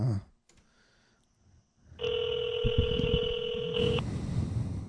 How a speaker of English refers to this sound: He's calling her with his cell phone.